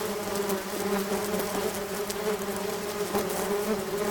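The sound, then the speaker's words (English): A dense, steady drone of many bees buzzing together, continuous for the whole stretch, with a constant hum and no voices. “Like, what if I take all these bees?”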